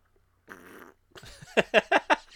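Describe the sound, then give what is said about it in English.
A fart noise: first a short, buzzy blat, then after a brief pause a louder run of four quick sputtering bursts, prominent with no talking. “Fart noises are always funny. A well-timed fart noise.”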